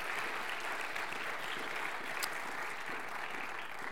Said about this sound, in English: And so we just want to acknowledge that as a church family before them to say thank you for your serving. I think it'd be appropriate for us just to acknowledge that with our applause.